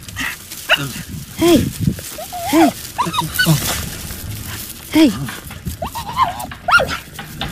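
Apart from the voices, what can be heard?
dog making noises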